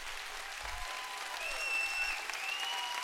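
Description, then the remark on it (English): A standing church audience claps in praise to the Lord, a dense, steady wash of many hands applauding together at a fairly loud level, with a faint sustained tone sounding above it and no speech. “Somebody stand on your feet and give the Lord a hand clap of praise.”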